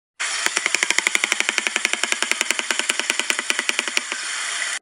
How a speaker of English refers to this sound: They also make this really unsettling clacking noise with their bill. Roll the audio!